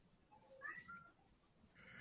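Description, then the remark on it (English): A lead-colored male cat meows, upset at not being paid attention to: a single drawn-out, slightly strained cry rising in the middle, against faint background noise with no one speaking. “My cat's name is Zeppelin because he's the color of lead.”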